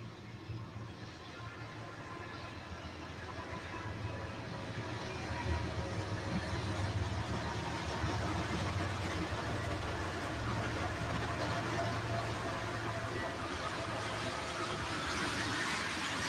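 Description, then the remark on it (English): A heavy freight train rumbles past, a steady low roar with rattling and clanking that builds slightly after a few seconds and holds continuously throughout. “when I say, won't you sit in front of that train, this is the train I mean. This is it right here.”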